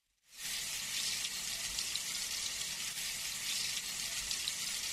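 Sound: food sizzling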